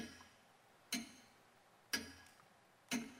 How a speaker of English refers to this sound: God has called our number, but we have not listened, and the clock is still a-ticking.